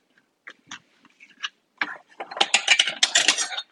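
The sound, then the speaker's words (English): A knife cuts across a chicken thigh on a cutting board, slicing it into pieces: a few sparse, scraping cuts at first, then a dense run of rapid, crackly strokes that grows louder toward the end. “So I'm just cutting across. I've got the chicken thigh laying perpendicular to me on the cutting board.”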